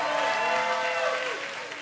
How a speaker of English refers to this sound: Come on, let's give Jesus a bigger hand clap than that.